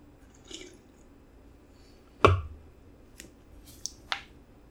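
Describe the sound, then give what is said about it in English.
A quiet sip from a can of pilsner brewed and canned by Diebold Brewing Company in Denver, Colorado: one sharp contact of metal at the lips, then a few soft wet clicks and a swallow, with no talking. “Let's take our first sip.”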